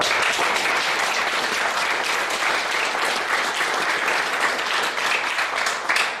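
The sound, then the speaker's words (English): Sustained applause from a seminar audience, a dense, steady wash of many hands clapping at fairly loud, even volume throughout, with no one speaking over it. “And Marcus, of course, well, you've already got lots of claps, Marcus, but you've done a great job at this seminar anyway.”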